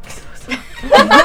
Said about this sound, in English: I held it for as long as I could. Oh, you sneeze like a kitten.